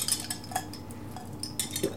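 Cocktail glasses of tequila sunrise clink together in a toast: a few bright, high-pitched chinks and taps scattered over two seconds, fairly quiet, with no voices.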